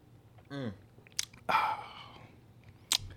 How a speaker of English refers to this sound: Let's tap into this. Let's go and get a swig of this. I've actually been sipping on mine already.